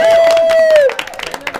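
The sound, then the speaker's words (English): Light, scattered audience clapping, soft and uneven, with a long, steady high whoop held over the first half before it slides downward and fades, leaving the sparse claps alone. “We can have a little light applause.”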